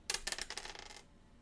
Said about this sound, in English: Roll the dice one last time.